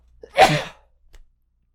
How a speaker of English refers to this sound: I think I'm going to sneeze.